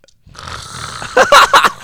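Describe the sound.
A person loudly imitates snoring, producing a few rough, rattling snorts in quick succession after a brief low rumble.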